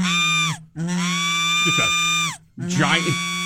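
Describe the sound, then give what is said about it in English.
Three long, loud, nasal honks, each held steady for about a second with brief silent gaps between them, like a big duck's drawn-out quack. “Giant duck floating someplace.”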